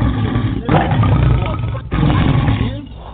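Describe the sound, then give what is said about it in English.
An audience at a Christian service roars together for victory and healing in a loud, sustained, rumbling crowd roar that swells in two long waves, dipping briefly between them before surging again and tapering off at the end. “Listen, roar for your victory. Roar for your healing.”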